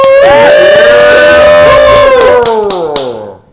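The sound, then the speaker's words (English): An audience cheers, a long sustained whooping voice riding over the crowd while scattered hand claps snap through it, all loud before fading out at the end. “Give it up”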